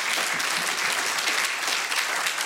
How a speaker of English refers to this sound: Well, let's give a big round of applause for anybody that prayed that for the first time.